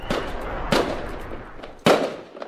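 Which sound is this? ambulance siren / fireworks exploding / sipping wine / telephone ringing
fireworks exploding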